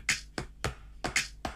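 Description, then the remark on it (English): Sharp, bright hand claps in a music track land in a steady rhythm, about six in under two seconds, some hits sounding doubled or layered, with claps from the left and right speakers and one in the middle emphasizing the beat, no voices over them. “And it really just sounds like there's a couple of claps happening from like the left and right speakers.”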